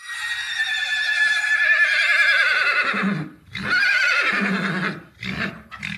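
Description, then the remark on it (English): A horse whinnies loudly: a long, quavering call that slides downward, then a second shorter whinny and a couple of brief snorting bursts. “They don't whinny like the horses up at Karlsruhe.”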